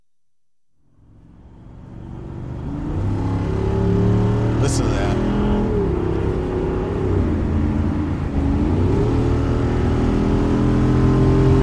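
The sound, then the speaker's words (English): A car engine roars up from quiet into a loud, sustained rev, its pitch climbing and dipping through gear changes as it accelerates hard to a speed of 90, with a brief spoken remark at the start. “But I didn't even feel us make the acceleration almost. It just like jumped.”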